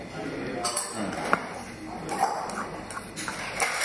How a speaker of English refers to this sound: maybe you'd like to move to the front area because there'll be noise with the dishes